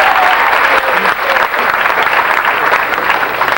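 A crowd applauds Narrowsburg for its participation in a mob film, a dense, steady wash of many hands clapping at once, loud and sustained throughout without a pause.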